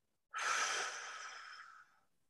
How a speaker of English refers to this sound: So step number one to the box breath is to breathe out any excess air that we currently hold in our bodies. So close your eyes and on the count of 3, 2, 1, breathing out.